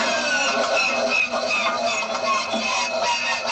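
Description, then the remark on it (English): A vintage biplane's starter motor whirs in a loud, steady mechanical drone, layered with buzzing tones and a gritty, grinding texture that holds without a break for several seconds. “One of these sounds was a starter on a vintage biplane.”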